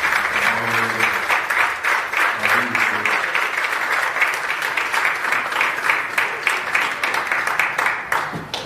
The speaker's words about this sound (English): If you love them, the leadership that's here at this church, I'm going to give the Lord a round of applause for that.